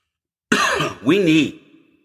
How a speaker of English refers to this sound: By the way, that was not a COVID cough. I don't think it was.